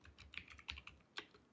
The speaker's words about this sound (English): Keyboard typing, mechanical keyboard.